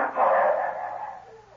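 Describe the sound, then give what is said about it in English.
A hound bays in one long, drawn-out cry that swells quickly and then slowly fades, with no voices over it; the hounds are tracking a scent. “The dogs have got the shadow.”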